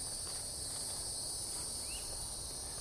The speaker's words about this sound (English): See, last night it didn't matter as I was walking through here. It was incredibly loud. Bugs don't seem to mind being recorded.